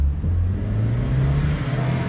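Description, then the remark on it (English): A low-slung Porsche convertible's engine hums steadily and rises slightly in pitch as it accelerates, a continuous low growl with broad road and wind noise, no voices. “We're so low to the ground, it feels like the car is twerking. She's a Porsche.”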